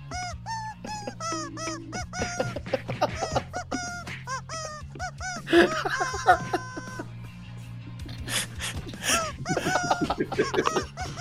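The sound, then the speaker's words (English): A rubber chicken squeaks in a rapid run of shrill, honking squawks, loud, then breaks into scattered squeals over a steady low rumble and faint background voices, amid a crowd of 80,000 people. “Then laying there surrounded by 80,000 people with a rubber chicken a foot away from your head.”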